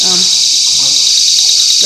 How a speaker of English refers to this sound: Hello, y'all. Welcome to my house where the alarms go off.